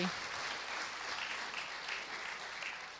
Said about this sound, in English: Give the Lord a great big hand clap.